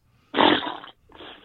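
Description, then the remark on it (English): A voice blows a raspberry-style fart noise: a loud, buzzy burst lasting just over half a second, then a shorter, softer second sputter after a brief pause. “Fart noise.”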